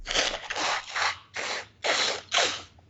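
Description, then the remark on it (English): A loud run of about five forceful nose blows by a person with bad allergies, each a short breathy, rasping burst following quickly in an uneven rhythm, with no talking. “I blew my nose at that reference.”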